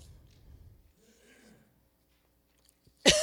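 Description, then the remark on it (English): A single sharp, loud cough lands right on the microphone near the end, after a stretch of quiet low murmuring and faint background rustle. “Excuse me, I didn't mean to cough into the mic.”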